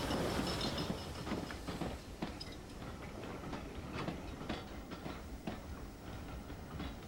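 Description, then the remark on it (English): A train arrives at Bewdley on a single-line section, rolling along the track with a steady rumble and regular clickety-clack of wheels over rail joints, no voices present. “On reaching Bewdley, the driver gives up the token by looping it in its holder over the arm of the waiting signalman.”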